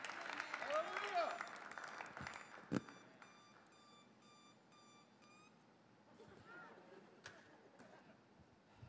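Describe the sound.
An electronic alarm beeps in a quick, evenly spaced series of about eight high tones at moderate volume, preceded by crowd noise and murmuring voices that continue faintly underneath.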